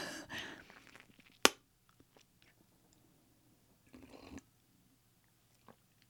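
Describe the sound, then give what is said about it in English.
Quiet sipping from a martini glass: soft slurping mouth noises, a single sharp clink of the glass, then another brief sip and a faint smack, with no talking. “Now watch when I take a sip.”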